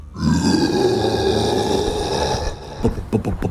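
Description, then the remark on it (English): A person imitates a bear's roar: a loud, sustained, rasping growl with a low, rough tone lasting a couple of seconds, ending in a series of short, choppy grunting bursts. “You all hear the roar of a bear.”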